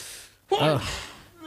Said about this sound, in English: I sneeze, y'all.